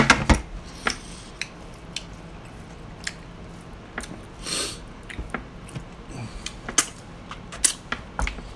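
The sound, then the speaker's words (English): Someone chewing a mouthful of nachos and meat, with irregular wet squishes and sharp crunchy clicks over about nine seconds, fairly quiet overall, and nobody speaking. “There's still quite, not quite a bit of meat, but enough to take me a minute to chew it all.”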